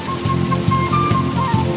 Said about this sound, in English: Good morning, California. A weather pattern called El Nino has begun, and heavy rain fell in the Bay Area, which includes the city of Palo Alto.